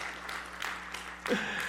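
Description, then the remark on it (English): An audience at a church gathering applauds in a steady, dense patter of clapping at moderate volume. Near the end it swells briefly, with a faint cheer or whistle rising above the claps. “But if you want to applaud, yeah, go ahead, man.”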